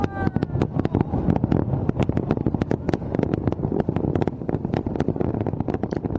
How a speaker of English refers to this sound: Inside a giant snowflake to give China's first Winter Olympics its symbolic opening, following by the third major fireworks show of the night. Sounded something like this.